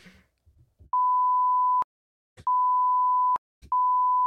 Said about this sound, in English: I feel bad for only audio listeners right now because I'm beeping. I'm hearing it.